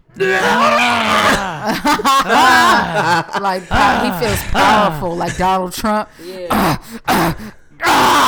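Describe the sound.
A voice imitates a man screaming at climax with loud, strained groans and sliding, pitch-bending cries in several bursts, broken up by short stretches of ordinary talk.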